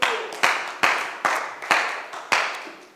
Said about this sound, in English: Well, I don't know why three people were excited and they're clapping.